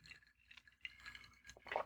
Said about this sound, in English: All right, ready? I'm ready. Yes. Cheers. Cheers. Clink.